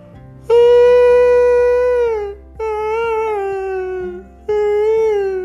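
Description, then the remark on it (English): A baby seal cries out in three long, loud wailing calls, each a drawn-out mid-pitched moan lasting a second or two, separated by brief pauses over a faint low hum. “Oh my gosh, it's a baby seal.”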